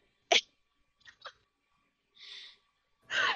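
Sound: imitated sneeze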